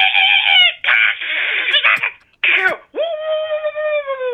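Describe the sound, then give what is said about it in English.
A voice imitates shrieking monkeys with a run of loud, shrill, wavering screeches broken by raspy, breathy bursts, ending in one long sustained high-pitched wail. “You just hear the shrieking of monkeys.”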